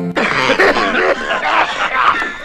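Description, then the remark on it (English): A person coughs hard several times in a row after smoking a bong, loud, the harsh, hacking bursts running together into a strained, rasping fit with throaty, voiced edges. “Once a jolly smoker lit up his billy bong, blew out his breath and then pulled one through, and he coughed and he coughed and coughed for a little while.”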